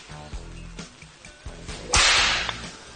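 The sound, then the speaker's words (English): A whip cracks several times in sharp, irregular snaps, ending in one loud, hissing lash that trails off, all with no talking. “Well, your whip is calling you a fool also.”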